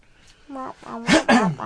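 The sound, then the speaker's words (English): A few fairly loud coughs from a person who just took a cough drop, rough throaty sounds building to two harsher bursts near the end, mixed with short voiced grunts between them. “Stop coughing.”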